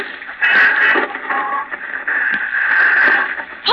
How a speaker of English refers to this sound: Fooling with that thing. Static's pretty bad tonight.